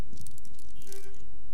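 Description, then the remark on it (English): A car horn is honked at a church gathering by someone who has served the area 25 years or longer, one brief steady mid-pitched blare lasting under half a second, preceded by scattered rustling, crackly noise; nobody speaks. “If you have been serving this area more than 25 years, 25 years or longer, I want you to honk your horn.”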